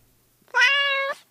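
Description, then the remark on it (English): A single drawn-out cat meow, loud, holding a steady pitch for about half a second before cutting off, with no voices present. “Is that a cat? Oh, jeez. There's so many cats here.”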